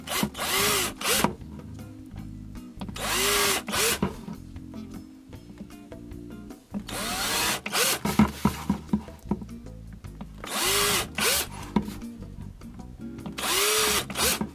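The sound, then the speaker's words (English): A power drill whines in repeated bursts, boring a hole through each cavity of an upside-down plastic tray, one after another, to make a sugar feeder for bees. Each loud burst is separated by short pauses and faint clattering. “We're going to drill a hole in every one of these cavities here so that this will fill up with sugar and the bees can come here and suck it up.”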